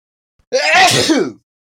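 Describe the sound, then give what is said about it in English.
A single loud sneeze bursts out suddenly, a sharp breathy explosion lasting under a second with a brief rising wheeze before it fades. No one talks. “Excuse me. Bless you.”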